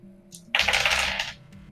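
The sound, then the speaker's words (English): Dice clatter and roll across a hard table in a short burst of rapid clicking that lasts under a second, then settle into quiet; a tabletop game roll to scan the area, coming up 4. “But the dice aren't hot?”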